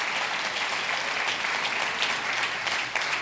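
A crowd claps their hands in response to a preacher's call to clap, a dense, continuous wash of many hands clapping at once with no pauses, fairly loud and sustained throughout, with no voices standing out.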